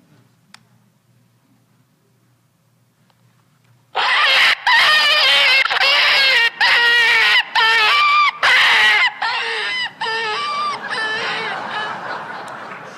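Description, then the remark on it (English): After a few seconds of near silence, a hunting predator call, a device imitating rabbits, young deer and coyotes to draw in game, bursts in with loud, shrill, wavering squeals repeated in rapid bursts, mimicking an animal in distress, then trails on slightly softer to the end. “fiendish little devices that imitate rabbits and young deer and coyotes to draw your quarry in so you can shoot it.”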